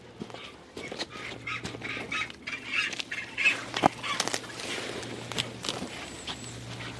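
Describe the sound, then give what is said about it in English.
Harsh, honking calls of crested penguins rise and fall at a nest with one chick in Harrison Cove, mingled with rustling and scuffing footsteps on rocky ground, with a steady low hum beneath. “that's just one of the nests that just has one chick at this stage, which is normal for crested penguins”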